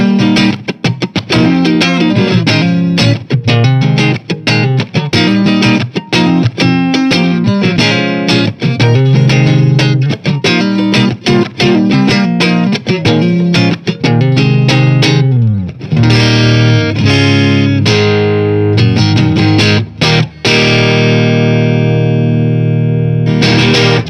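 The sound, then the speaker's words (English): An electric guitar played on its neck pickup, loud and warm with a slightly driven tone, strumming rhythmic chords and quick notes, then settling into a ringing, sustained chord near the end. “The neck pickup.”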